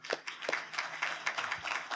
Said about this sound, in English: I'd like to ask all of you to give a round of applause